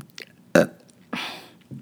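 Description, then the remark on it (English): A short, loud burp erupts, followed a moment later by a longer, raspy belch, with a third starting right at the end. No talking. “And, oh, here comes another burp.”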